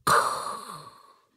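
A single heavy, raspy breath pushed out close to the mic, a breathy rush that starts sharply and trails off over about a second, with no talking.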